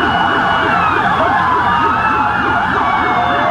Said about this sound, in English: Maybe the sound of a siren. You would be warned.